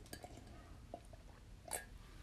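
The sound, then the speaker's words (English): A couple of soft taps, then one bright, ringing clink of glass, like a shot glass set down or touched against another, as someone takes a shot of tequila, in an otherwise quiet moment. “A bitch taking shots of tequila.”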